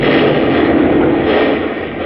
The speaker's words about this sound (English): a terrific explosion, seeming to start somewhere deep inside the massive concrete oven on which the globe stood, erupts and blows the entire peak